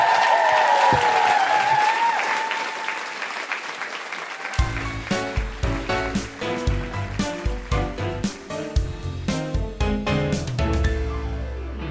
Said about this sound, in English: Big round of applause for the incredible Jamie Barton!